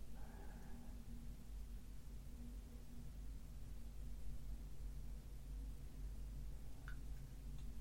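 An airplane drones overhead in the sky, heard from inside a shed, a steady low rumble with a faint hum that holds unchanged for the whole stretch, with no voices and only a brief soft click near the end.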